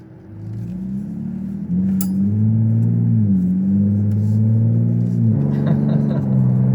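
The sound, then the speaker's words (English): A truck's deep, rumbling exhaust note revs up and settles back, its pitch rising and falling in a few swells, loud throughout. “It does sound like if you could figure out how to get that exhaust note, that'd be pretty amazing on yours.”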